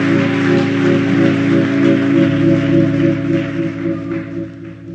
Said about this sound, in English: We'll clap your hands to the Lord, and you can be seated. Praise God.